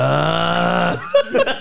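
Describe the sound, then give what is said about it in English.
A man's voice imitates snoring: one long, buzzing, droning groan lasting about a second, then a few short, raspy snorts and breathy bursts. “I didn't know it was somebody snoring.”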